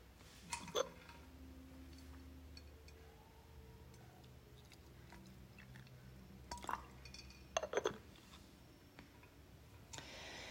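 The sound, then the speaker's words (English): A person quietly pours themselves another bowl of tea, with a few soft ceramic clinks and faint liquid drips scattered over a hushed, still background. No one speaks. “And now I'm going to pause for a second while I pour myself another bowl.”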